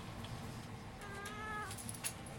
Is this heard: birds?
no